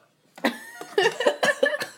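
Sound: burp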